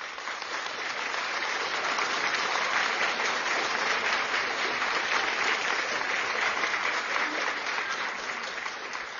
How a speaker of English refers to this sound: So let me clap it up one more time for the mamas out there, the real mamas.